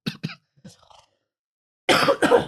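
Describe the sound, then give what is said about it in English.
A loud, abrupt sneeze bursts out in two quick harsh blasts near the end, following a couple of softer breathy catches and a brief pause. “Excuse me. Bless you.”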